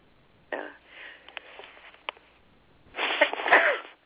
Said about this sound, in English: Excuse me, I just sneezed. I don't know if I was able to keep that off the air or not.